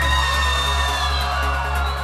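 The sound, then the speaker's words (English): A large crowd on a dance floor in Russia screams and cheers in one loud, continuous roar, with a steady low bass hum running underneath throughout. “Can you scream as loud as you can?”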